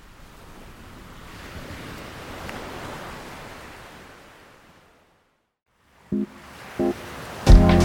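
Ocean waves break on a shore in a soft, steady rush, peak, then recede into silence; a few brief knocks and a louder tonal sound follow at the end.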